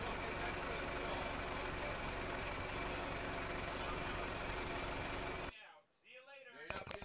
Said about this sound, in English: your car's not starting. The car doesn't sound good.